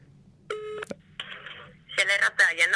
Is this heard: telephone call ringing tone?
yes